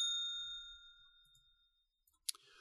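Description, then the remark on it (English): A bell is struck once as a spoiler warning, its bright metallic ding ringing out and slowly fading over about two seconds, followed by a sharp brief clack near the end. No one speaks. “But I'm going to hit the bell anyway.”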